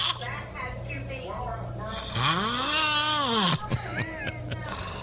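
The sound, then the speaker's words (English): A sleeping person lets out one long, rasping snore that swells and fades over about a second, fairly loud, over a steady low background hum. “Well, I think the reason that the lovely Lindsay makes you wear that is because we have audio of you snoring, and I totally get it.”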